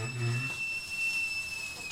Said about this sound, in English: Thank God the kettle whistled, or I would have burned my dad's apartment down.